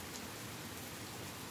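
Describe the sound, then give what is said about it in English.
Steady rain patters down in a dense, even hiss with scattered drops, soft and continuous with no voices and no thunder. “Do you like rain?”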